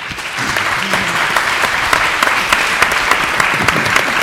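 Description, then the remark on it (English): A crowd breaks into steady applause for the panelists at the end of a panel session, many hands clapping in a dense, continuous patter that swells within the first half second and holds at a loud, even level throughout. “And let's maybe have a round of applause for the panelists.”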